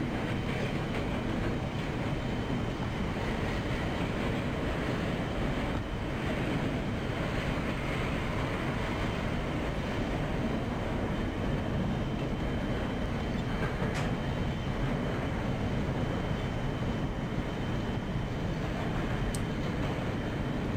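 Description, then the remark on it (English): A synthesized, simulated train rumbles steadily along the tracks in mono, a continuous low, dense roar with faint rhythmic clatter, holding constant loudness throughout with no voices. “Doesn't this sound a little bit better than Dreamy Train? It's in mono, though.”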